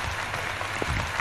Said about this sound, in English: Am I the only one clapping? Well, I'm clapping.